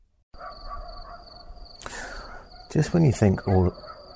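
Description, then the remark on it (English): Crickets trill steadily at night around 3 a.m. in Cape Verde in a thin, high, unbroken drone. A short rustling burst interrupts, followed by a few loud, tonal vocal calls that briefly drown out the chirping, with dogs barking and echoing in the distance. “Just when you think all is quiet in Cape Verde, in the dead of night, with a beautiful sound of crickets, you may in the distance hear the echoing bark of dogs.”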